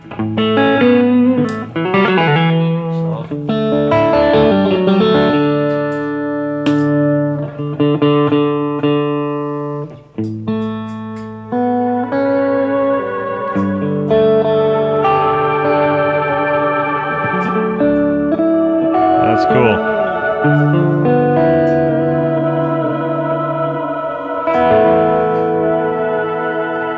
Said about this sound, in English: So any weirdo sounds you get out of your pedal board?